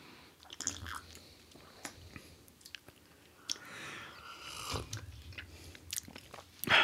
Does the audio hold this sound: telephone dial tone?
no